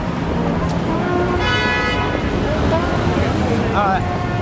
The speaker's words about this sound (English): It is so fucking crowded and so fucking noisy and people honking and traffic jams,